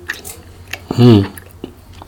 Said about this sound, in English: I don't know why your brother keep chewing on this goddamn gum, sounding like Mr. Ed. You keep throwing it in his mouth.